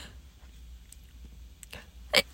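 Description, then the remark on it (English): A single sharp sneeze bursts out near the end after a quiet stretch of faint low rumble and small mouth sounds. It's brief and loud. “Snizzle. That's what I say after people sneeze now.”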